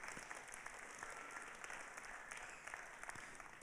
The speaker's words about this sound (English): Why don't you give yourselves a round of applause, eh? That's it.